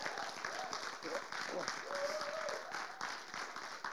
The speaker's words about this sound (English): So can we give these guys a round of applause?